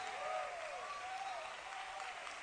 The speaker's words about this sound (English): Clap your hands unto him. I said clap your hands unto him.